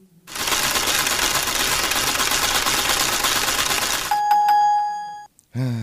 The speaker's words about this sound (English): let's spin the wheel for you.